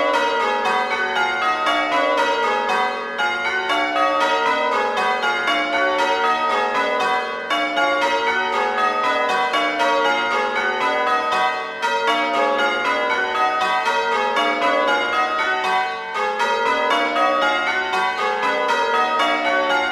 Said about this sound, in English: Next, the North Creek bells.